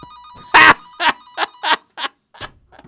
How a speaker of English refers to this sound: unplugged the cord, and it didn't stop the phone from ringing. There is some wizardry happening right now.